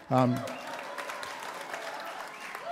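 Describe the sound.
A crowd of thousands applauds in a museum at an evening show with a lineup of artists, with dense, steady clapping throughout, opening with a brief loud tonal cheer and carrying a faint murmur of voices underneath.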